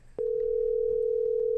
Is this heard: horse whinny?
no